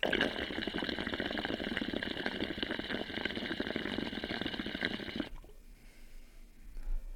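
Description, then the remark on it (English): A topwater chopper lure is pulled through water, its low drain intake making it chop the water hard, with a rapid, steady splashing and chopping for about five seconds, fairly loud, then cuts off abruptly into quiet. “These are choppers back in the day, especially because the low intake on the drain makes it chop water hard.”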